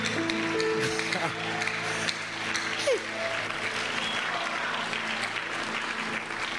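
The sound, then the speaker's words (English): An audience claps during a sermon in a dense, steady burst of applause that lasts throughout, with some murmured voices and faint sustained tones underneath. “I don't know why you are not clapping.”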